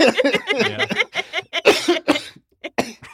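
A harsh, hacking cough: a few raspy, throaty bursts followed by several sharp, explosive coughs in a ragged, uneven series, each separated by brief pauses.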